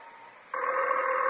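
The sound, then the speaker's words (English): A telephone rings with a steady electronic tone that cuts in abruptly over a faint, thin hum and holds loud to the end, with no voices. “Harry, the phone. I know it's the phone.”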